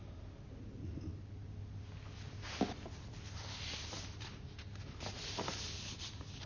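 Soft papery rustling and a few light flutters as a sheet of paper drifts down, quiet, with a faint low hum underneath and no talking.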